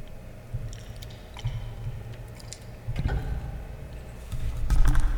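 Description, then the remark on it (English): A drink being poured right up on a microphone, with bubbling, gurgling bursts and small crackling pops that come in irregular waves and grow louder near the end, with no voices. “We're just gonna get this pour real good.”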